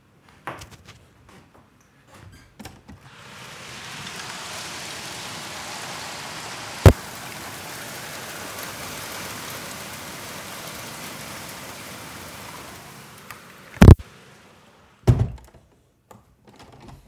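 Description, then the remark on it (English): Heavy, near-hail rain pounds steadily on the ceiling of a high-rise building, high up, in a dense, hissing roar that swells and fades, punctuated by a few sharp, loud thunks; no one speaks. “I'm in a high rise and I'm quite high up, so I can hear it hitting on the ceiling, and it's just so powerful.”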